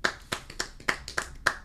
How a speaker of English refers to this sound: How are you doing that with no hands? What the hell? How are you clapping like that, dude?